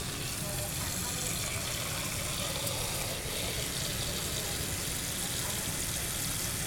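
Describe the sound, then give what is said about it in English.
Steady rush of water running from a tap into a saucepan holding eggs, filling it to cover them by about an inch, a continuous hiss and splash with no pauses for the whole stretch. “So what we're going to do is just put the eggs in a saucepan and then we'll just cover it by about an inch of water.”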